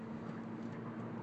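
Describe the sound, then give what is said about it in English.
A car engine drones at a steady, sustained pitch with a broad rushing roar as the car is driven at about 120 km/h while passing other vehicles; moderately loud, continuous, with no voices. “Gonna hear some loud engine noises as if I am racing.”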